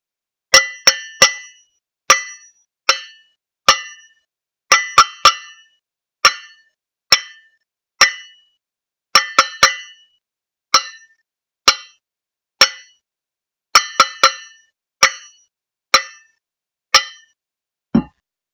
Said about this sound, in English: Some of you recognize as Morse code, SOS, the time recognized distress signal. Only in 1941, the banging was coming from deep inside the forward part of the sunken USS West Virginia.